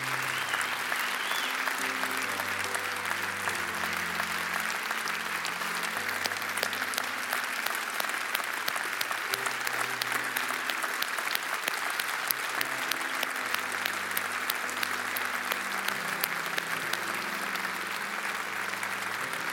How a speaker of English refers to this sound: And the crowd goes wild.